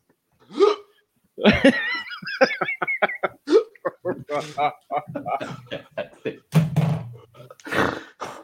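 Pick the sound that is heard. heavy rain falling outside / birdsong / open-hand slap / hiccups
hiccups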